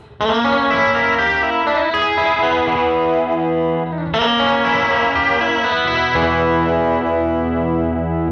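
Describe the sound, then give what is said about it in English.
Electric guitar strums sustained, ringing chords with a quick slapback echo, changing chords about every two seconds. It plays loud and steady, with no talking. “Dial in a little bit of slap here, so you can hear that.”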